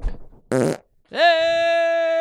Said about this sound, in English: Sorry. Wow, new podcast record. Fart my ass off tonight.